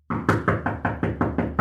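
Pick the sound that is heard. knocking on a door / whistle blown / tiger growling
knocking on a door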